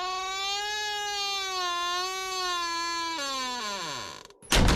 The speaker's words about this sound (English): The village was so quiet that everyone heard the door close.